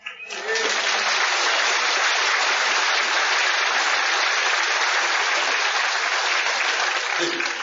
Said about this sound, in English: That applause was the first reason. I like to hear him clap at the beginning because you're not too sure what happens at the end.